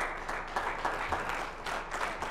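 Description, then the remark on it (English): A crowd claps together in a sustained burst of applause, dense overlapping handclaps filling the space at a steady moderate level, with no voices standing out. “Give God a hand clap for that.”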